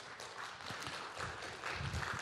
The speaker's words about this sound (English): Can we give him a great round of applause this morning?